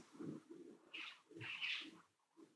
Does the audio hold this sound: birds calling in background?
yes